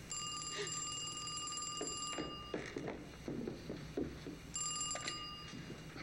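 A telephone rings in two bursts, a long ring and then a shorter one after a pause, with faint clattering and rustling in the background. The ringing is fairly loud, and no one speaks.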